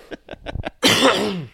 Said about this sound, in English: I need to clear my throat and I can't really talk and you keep throwing it to me.